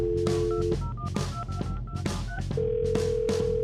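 A telephone line sounds alone as a prank phone call is placed: a steady tone, a run of short dialing beeps with clicks, then a long, level ringing tone as the call waits to be answered, clear.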